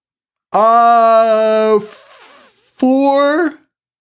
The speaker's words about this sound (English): Sorry, I'm yawning. Dude, I'm so tired. biggest fucking yawn I ever seen.